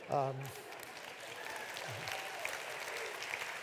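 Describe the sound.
Steady audience applause, a dense crackle of many hands clapping, sustained at an even level throughout, with a brief voiced sound at the very start.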